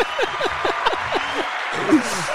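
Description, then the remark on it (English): A canned soundboard applause effect: a steady wash of clapping hands, overlaid with a series of repeated swooping tones that come roughly twice a second. “The clapping hands.”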